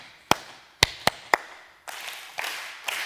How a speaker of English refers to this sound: So I'm going to clap it, you'll learn the rhythm, and then you clap it.